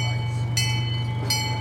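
A small zoo train at the Santa Barbara Zoo runs along its rails with a steady low rumble and hum, broken by two short, bright metallic screeches from the wheels about a second apart.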